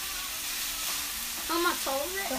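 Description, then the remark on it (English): Chicken sautéing in a pan gives a steady, dense crackling sizzle throughout, with a few brief higher tonal squeaks rising over the hiss toward the end. “We are, I keep saying we are sautéing our chicken.”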